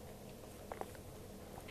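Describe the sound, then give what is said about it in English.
Two soft, quick sipping sounds from someone drinking tea, spaced a split second apart, then a quiet pause with no talking. “just a minute, let me sip my tea.”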